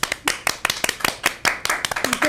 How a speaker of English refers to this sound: Clap it up!